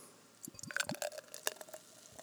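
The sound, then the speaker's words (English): Beer poured from a can into a plain glass, with a quick run of wet glugs and splashy bubbling over a couple of seconds, fairly quiet, and no voices. “I'm going to pour this bad boy in, and let's see what it looks like, what kind of head we get out of this, and go from there.”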